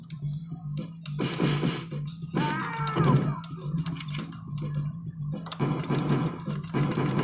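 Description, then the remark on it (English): In the video game Die Hard Arcade, played using a spray can and a lighter, a character lets out a warbling, gargled death cry midway through, over a steady low buzzing hum and bursts of rhythmic, mechanical-sounding game noise. “That was one of the most hilarious deaf gargles I've ever heard in a video game.”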